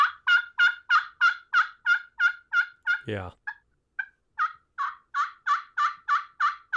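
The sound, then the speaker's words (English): A rapid run of loud, raspy gobbler yelps made on a hand-held turkey call, steady and evenly spaced, pausing briefly for a short spoken word before the yelping resumes at the same pace. “Yeah, so this is my gobbler yelping call.”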